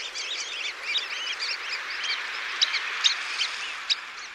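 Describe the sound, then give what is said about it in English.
Many sanderlings, tiny sandpipers on a winter shore, chatter continuously with quick, high, sharp calls that overlap, a few louder notes near the end, all over a steady hiss like surf. “Though most birds that enliven beaches in summer have gone south, tiny sandpipers called sanderlings are easy to find on winter shores.”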